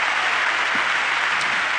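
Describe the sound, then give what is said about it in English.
An audience at a camp meeting claps steadily in praise to the Lord, a dense wash of many hands at even loudness for the whole stretch, with no voices rising above it. “Give the Lord a hand clap of praise tonight.”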